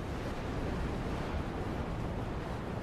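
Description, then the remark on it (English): A steady, unbroken roar of wind and rain, dense and rumbling in the low end, holding at a constant level throughout with no voices or distinct individual sounds. “It's just rain and rain and wind.”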